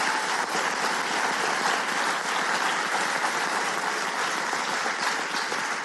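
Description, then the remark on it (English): Steady applause from a sizable audience, a dense, continuous clatter of many hands clapping at once for a woman who stepped out of her comfort zone, holding at an even loudness for about six seconds with no voices over it. “I want everybody to give her a round of applause.”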